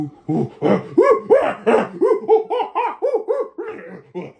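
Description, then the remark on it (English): A voice imitates a laughing hyena with a rapid run of about a dozen high, arching whoops that rise and fall in pitch, loud and steady throughout, with no speech. “I'm telling you, now it sounds less monkey, and it sounds more hyena, like a hyena laugh, yeah. like a laughing hyena, like coming echoing down.”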